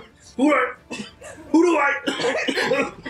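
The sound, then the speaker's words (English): A person makes a series of exaggerated, voiced coughing sounds, four or five loud hacking bursts, seemingly acted out with the voice rather than a natural cough. “You're gonna hear see him cough it.”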